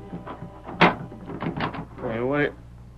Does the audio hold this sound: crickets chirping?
no